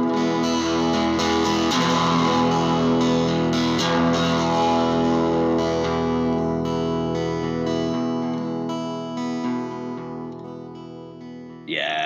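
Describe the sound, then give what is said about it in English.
An overdriven electric guitar plays loud, sustaining chords and notes through an overdrive pedal giving a volume boost and gain boost, the gritty gain thickening partway through before the sound eases off and ends with a sharp strummed hit. “So you get a volume boost, you get a gain boost, and as you are about to hear, you do get that look, that, you know, extra distortion.”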